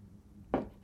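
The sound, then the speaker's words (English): A single quick sip from a drink, a brief soft slurp with no one talking. “Let me take a sip.”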